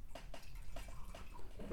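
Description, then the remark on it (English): Buffalo Trace bourbon being poured into a glass: a quiet run of about half a dozen hollow glugs and trickles, unevenly spaced, ending in a brief louder splash. No one speaks. “I think we should pour just one more little bit.”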